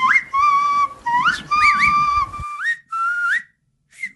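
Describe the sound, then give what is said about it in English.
A woman who imitates birds professionally whistles a bird call imitation: a series of high, clear phrases with quick rising swoops and warbles, over a low rumble that drops away halfway, ending with a short chirp. “for being put on the spot, and this being a professional, which means she does this all the time, sits out by our bird feeder and mocks what's there. Talks to birds.”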